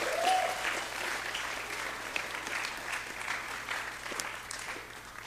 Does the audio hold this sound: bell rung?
no